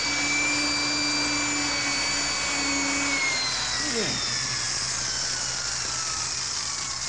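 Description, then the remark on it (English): A high-speed drill whines steadily and loudly as it bores into a time lock, its pitch dipping and straining briefly midway as it bites into metal before grinding on without a pause. “I can get this high-speed drill through to the time lock and get it to release the tumblers and bars.”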